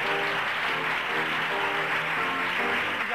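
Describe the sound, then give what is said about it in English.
Enthusiastic applause from a small gathered audience at the end of a reading of Carrie fills the whole stretch, steady and dense, with voices whooping, cheering and shouting out the cast's names as they take a bow, mixed into the clapping. “At the end of the reading, there is rapturous applause.”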